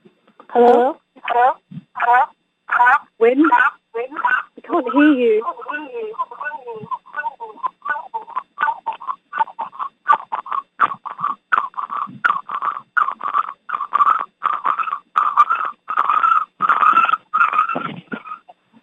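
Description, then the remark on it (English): Tinny, phone-line audio with an echo: choppy bursts of garbled voice repeat in quick succession, loud, with no clear words, running steadily throughout. “I can hear an echo.”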